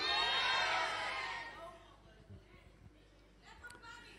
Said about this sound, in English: You guys are very quiet here. I can hear Brackenfell shouting louder than Montana.